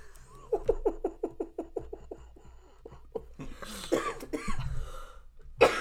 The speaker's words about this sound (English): You're going to make me go into a coughing fit, dude.